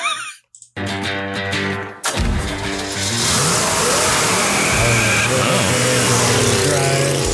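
A muscle car engine revs loudly, a deep throaty idle building into a roaring acceleration that swells and holds, with no talking over it.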